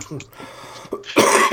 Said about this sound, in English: Even though you're coughing up a storm, you're smoking.